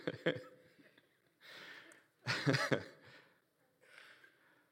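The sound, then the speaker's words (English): A few rough bursts of coughing and throat clearing come in an uneven series, the loudest in the middle, with short quiet gaps and no talking. “And, excuse me, it's wonderful not having a mute button, you know, for burps and coughs.”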